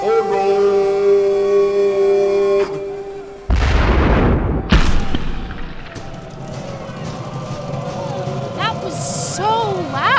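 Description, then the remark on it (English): A steady droning tone cuts off, then a single loud blast from a huge homemade cannon, built as a tradition, booms and rumbles away, with a sharp crack after it and excited voices and whoops afterward. “That is a huge cannon.”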